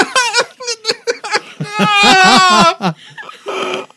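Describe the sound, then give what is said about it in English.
A person vocally imitates screaming, laughing and crying all at once: choppy, breathy giggle bursts rise into a long, high, wavering wail, then fall off into a raspy sob. “He is screaming, laughing, and crying, which you've never heard come from the same person at the same time.”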